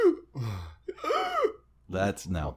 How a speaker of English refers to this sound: That's not good breathing. That's not breathing. It didn't feel like breathing.